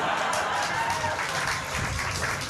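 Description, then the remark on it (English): A crowd bursts into steady applause, a dense, continuous patter of many hands clapping at a fairly loud, even level for a couple of seconds. “Don't clap it, you fools!”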